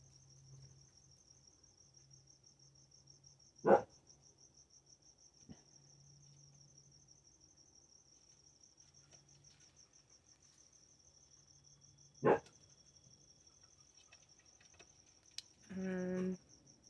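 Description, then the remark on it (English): Crickets chirp in a steady, high-pitched trill throughout, fairly faint, with a low hum beneath, two sharp knocks along the way and a short tonal squeak near the end. “Crickets. Real crickets.”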